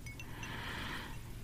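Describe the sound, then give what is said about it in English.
A few soft, high metallic tinkles ring out at the start and fade over a steady, airy hiss, like quiet chimes stirring in a breeze. No one speaks. “And imagine that you're surrounded by beautiful chimes. They sound so beautifully soothing, yet so calming and invigorating a lot of it.”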